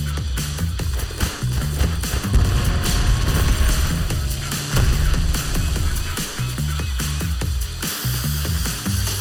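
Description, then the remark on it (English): Loud, dense explosions from a video game coming to PS5 boom and rumble almost continuously as everything blows up, with sharp blasts punctuating a heavy low roar and crackling debris, and no voices. “Like, I love the physics of just everything just fucking blowing up.”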